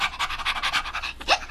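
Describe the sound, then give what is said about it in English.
A white dog, Silver Dog, pants and sniffs in quick, steady bursts of breath, a rapid rhythmic huffing that ends with a slightly stronger sniff. “Silver Dog put his nose in the air, proudly sniffed and wagged his tail.”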